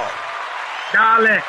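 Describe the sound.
A steady wash of crowd applause, dense and even, with a single voice briefly shouting or cheering over it partway through.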